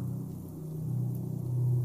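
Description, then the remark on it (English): A low, muffled rumble of distant thunder during a thundersnow storm, softened by the snowy landscape, rolls steadily for a couple of seconds, deep and soft, swelling slightly toward the end with no voices present. “The collision of these weather elements becomes a prelude to the flashes of light that soon follow with a distant rumble, a sound that is softened by the snowy landscape that absorbs its low booms.”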